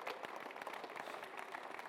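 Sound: audience clapping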